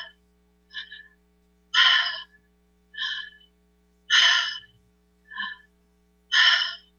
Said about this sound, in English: You breathe in and out through your mouth, and this is what it sounds like to do the breath work. And I will breathe along with you when the time comes. But this is what it sounds like. Breathing in, exhaling.